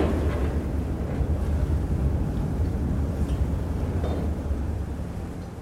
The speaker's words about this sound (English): I have to take a ferry